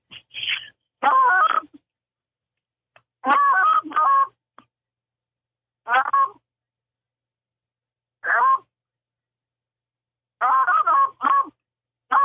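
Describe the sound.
A goose hunter imitates Canada goose calls with their voice, showing how to make the first call from a blind on seeing geese. The calls are a series of short, loud honking clucks in irregular bursts with brief pauses between them, with no talking.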